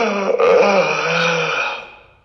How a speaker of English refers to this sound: That was a yawn. That was supposed to be a yawn.